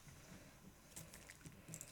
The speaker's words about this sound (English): Oh, water. Water, water, everywhere we're gonna get wet.